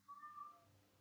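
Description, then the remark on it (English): A single drawn-out cat meow, fairly faint, rising then fading over about a second with low background hum and no speech. “I hope I'm not getting my cat meowing in the background on this.”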